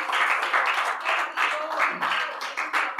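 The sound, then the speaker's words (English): An audience gives a hand clap of praise at a morning church service, a dense, sustained burst of applause that swells and dips in waves, fairly loud, with scattered voices calling out beneath it. “Come on, let's give him a hand clap of praise this morning.”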